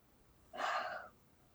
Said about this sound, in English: Nice yawn.